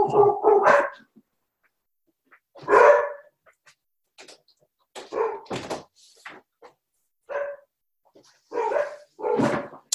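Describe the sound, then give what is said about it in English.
Several dogs bark in loud, irregular bursts at someone arriving home, with sharp yips and a few whimpers between them. The barking is excited, with no talking over it. “Sorry, my dogs are barking. Somebody must have just gotten home.”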